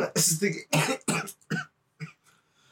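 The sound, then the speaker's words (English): A loud run of about five harsh coughs in quick succession, the last ones shorter and weaker, with brief raspy throat sounds between them. “Just a chunk of coughing.”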